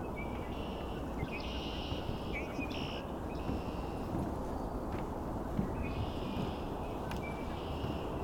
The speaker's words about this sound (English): This is only a handful of red-winged blackbirds. If we were here at sunrise or sunset, it would be 100 times more here, probably.